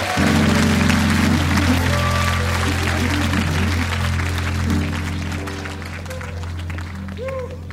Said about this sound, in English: All right, now. Let's keep those applause going, ladies and gentlemen.